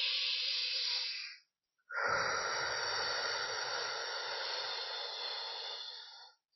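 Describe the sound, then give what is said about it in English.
One slow breath paced in for a count of 3 and out for 6, as used to get through labour contractions: a short inhale of about a second and a half, a brief pause, then a long, steady, airy exhale lasting roughly twice as long. “Then if you're breathing in a way where you're breathing in for 3 and then breathing out for 6, right? So that sounds a little bit like this.”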